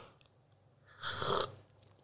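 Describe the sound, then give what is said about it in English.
A single sharp, airy slurp, fairly loud, lasting about half a second, as coffee is sucked noisily from a spoon during coffee tasting; otherwise quiet, no talking. “And it's usually with a spoon, and there's a lot of slurping noises.”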